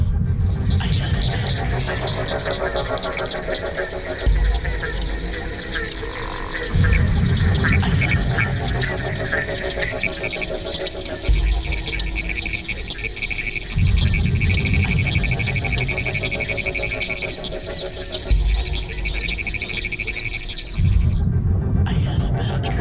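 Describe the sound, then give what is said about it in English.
A dense night chorus of several frog species calling at the same time: a steady high trill runs throughout while lower croaking swells in and out in pulsing waves, loud. “species of frogs were calling at the same time.”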